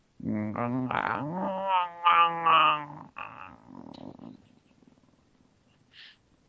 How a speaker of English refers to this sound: The tree roars in anger. Her voice, the sound of splitting wood.